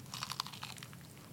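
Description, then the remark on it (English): Someone bites into crispy fried chicken, producing a quick run of crackly crunches over about a second, with no talking. “Oh, that has a nice crunch.”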